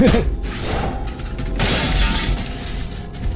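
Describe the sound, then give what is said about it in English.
A door into a clinic is smashed in with a loud, harsh crash, followed by about three seconds of dense splintering and shattering debris that stays noisy and rough throughout, with no voices. “All right, you bust the door down.”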